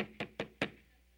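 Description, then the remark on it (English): Four quick, evenly spaced knocks on a wooden door, each a short dull thud with a brief ring, moderately loud, then quiet. No one speaks. “Have you ever gone to someone's house, good friend, and you're knocking on the door, and you know they're there, don't you?”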